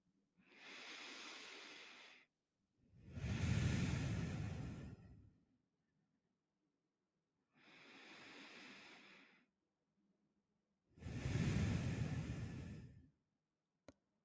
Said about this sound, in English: We're going to start by taking a few deep breaths together.